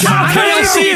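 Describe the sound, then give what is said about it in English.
A single voice mimics a screaming crowd with a loud, sustained, wavering yell lasting about a second, its pitch sliding and bending throughout. “The crowd screams.”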